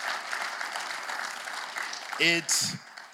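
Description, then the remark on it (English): An audience gives God a hand clap of praise, a dense, steady wash of applause for a couple of seconds, then a voice briefly rings out over the clapping near the end. “I believe that we should give God a hand clap of praise right now.”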